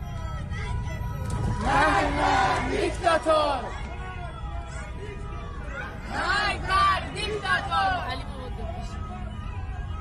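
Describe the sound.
A protest crowd chants in unison outside Dey Hospital, two loud rhythmic bursts of many voices shouting slogans over a steady background rumble of traffic and crowd noise.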